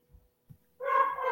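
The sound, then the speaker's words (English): A dog barks, one loud, drawn-out harmonic bark that follows a couple of soft low thumps. No one is talking. “My dog's barking.”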